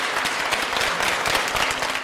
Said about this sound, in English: Please join me in a warm applause to welcome the General Secretary and other Political Bureau Standing Committee members.